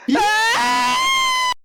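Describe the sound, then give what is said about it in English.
Several voices scream together, rising quickly in pitch and then holding a loud, high, sustained note for about a second and a half before it cuts off abruptly. “Should we scream and wait?”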